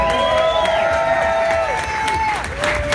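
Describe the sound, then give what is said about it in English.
A crowd applauds steadily, dense clapping mixed with cheering and long sustained whistles and whoops, loud and continuous throughout, honoring veterans at a race event on Veterans Day. “How about give them a round of applause?”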